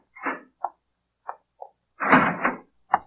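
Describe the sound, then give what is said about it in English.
A few sharp clicks and clunks, like a lock being worked, followed by a loud grinding scrape as a police lieutenant swings open a heavy cell door in the morning, ending in a final clank. No one speaks. “When you open your eyes again, the morning light is streaming in through the window, and the same polite police lieutenant is opening the door to your cell.”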